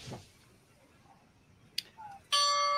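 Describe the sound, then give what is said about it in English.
After a stretch of quiet outdoor ambience with a sharp click, the Saratoga racecourse paddock bell, rung to call the jockeys into the paddock with no fans present, suddenly rings out loud, its bright metallic tone sustained and shimmering to the end. “another part of the Saratoga tradition, the ringing of the bell.”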